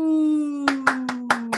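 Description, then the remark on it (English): Five sharp hand claps land in a quick, steady rhythm, each one crisp and bright, over a sustained held tone that sounds from the start and slowly sinks in pitch. “Why do my claps come out?”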